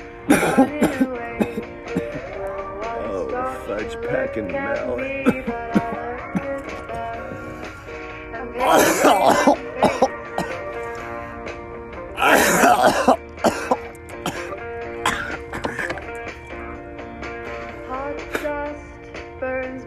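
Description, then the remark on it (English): Harsh, repeated coughing and throat clearing from smoking, loud, with two strong coughing bursts breaking through a steady background hum. “Guys, that you gotta hear me fucking up and smoke coughing for the last, like, what, 3 minutes now?”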